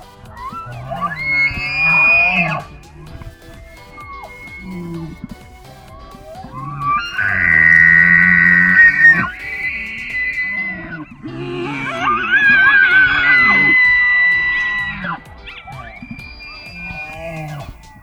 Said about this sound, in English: The elk is one of the largest species within the deer family. Bull elk lose their antlers each March, but they begin to grow them back in May. Male elks, which are bull elks, bellow loudly during the mating season to attract mates.